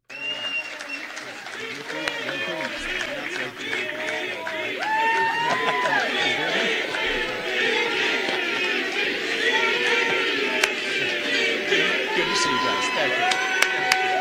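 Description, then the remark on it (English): A large crowd at a rally roars and chants "VP, VP, VP" after Vivek finished his speech and shook hands with Donald Trump. Many voices rise steadily and stay loud throughout, with scattered claps and shouts mixed into the dense noise. “After Vivek wrapped up his speech and he went over there and shook hands with Donald Trump and they kind of whispered something to each other, the crowd starts chanting, VP, VP, VP.”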